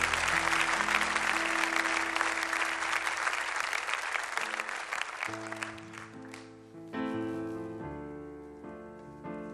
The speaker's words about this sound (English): Another hand clap of praise.